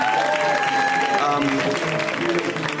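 Steady, loud audience applause fills the whole stretch, a dense patter of clapping mixed with cheers and a few high whistles.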